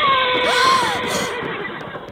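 A great black horse, one of two hitched to a black carriage in a muddy dooryard, neighs loudly, one long shrill whinny whose pitch wavers and slides down over about two seconds, with no voices around it.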